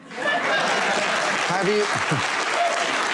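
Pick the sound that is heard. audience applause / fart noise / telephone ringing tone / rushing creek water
audience applause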